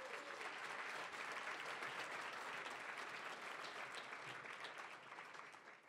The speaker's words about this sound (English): So how about a round of applause